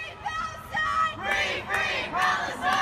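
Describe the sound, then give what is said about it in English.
A protest crowd shouts together in repeated, rhythmic bursts, many raised voices blending into a loud, strained chant that swells every half second or so. “And there are these morons shouting at people.”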